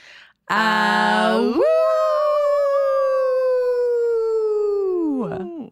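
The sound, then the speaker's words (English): Human voices imitate a wolf howl: a low, buzzy wavering start that slides up into one long, loud, sustained tone, slowly falling in pitch before breaking off with a short yelp. “I think we're ready to howl out”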